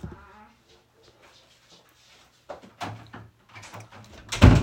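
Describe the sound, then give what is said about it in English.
A door shuts with a loud thud near the end, after some soft shuffling and a quieter knock, over a steady low hum. “close the door, please.”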